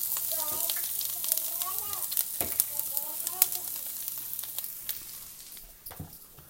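Vegetables sauté in a pan with a little olive oil, sizzling loudly: a steady hiss peppered with sharp pops and crackles. Faint, indistinct voice-like tones drift underneath before the sizzle eases slightly near the end.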